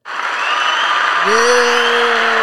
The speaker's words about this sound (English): Yo. Hold on. Hold on, do it again. I know I got some applause in here somewhere. It's been so long.